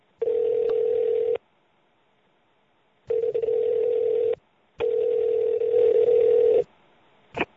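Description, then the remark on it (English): A steady telephone tone sounds in three sustained bursts, from about one to nearly two seconds each, separated by silent gaps, ending in a brief click, as an outgoing call is dialed. The sound is clear with no voices. “I will dial her up.”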